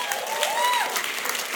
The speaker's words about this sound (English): If we're going to clap him, let's clap him.